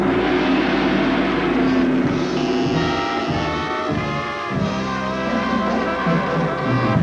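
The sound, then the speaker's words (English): A loud gong sound effect fills the whole stretch with a dense, shimmering crash that sustains for several seconds, its ringing overtones steadying into a lingering metallic hum. No one speaks over it. “I'm including that sound effect.”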